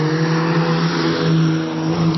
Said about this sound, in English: Drive a motorcycle away.